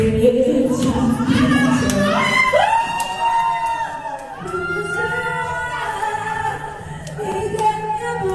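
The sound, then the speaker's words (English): A group of elderly residents at the Taiwan Veterans Home nursing home cheer and call out together in rising and falling voices, clapping along to a stripper's show, with faint scattered clapping underneath, lively and steady throughout. “The other residents at the nursing home are clapping along, and they are all loving this show.”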